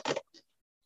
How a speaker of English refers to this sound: And what I'll actually do is I'll grab half of the deck, just like so. So one half is face up and one half is face down. And what I'll do is I'll shuffle those halves together, just like so.